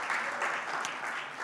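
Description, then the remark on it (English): An audience at a church service claps together as a praise offering to God, a dense, steady wash of applause, many hands blending into a continuous crackling roar that holds at an even level throughout. “You know, if you want to give God praise right now, just give him a big clap offering, because he is good.”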